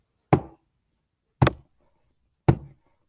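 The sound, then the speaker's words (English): Three slow, heavy knocks on a door, evenly spaced about a second apart, each a sharp thud that dies away quickly into silence. No voices. “They hear a knock on the door.”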